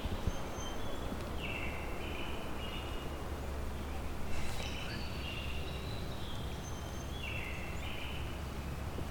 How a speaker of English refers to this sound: I can catch the vocalization of this brown creeper closer up. More specifically, the song. Brown creepers don't mind. There it is. I don't mind people being too terribly close. Not gonna flush on me for being 20 feet away.